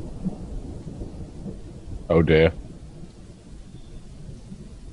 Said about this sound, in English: And then all of a sudden, there was an electric flash of lightning and a simultaneous roar of thunder.